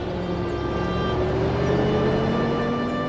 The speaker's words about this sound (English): He had landed in the back of the pickup truck. The truck vibrated and began to drive away.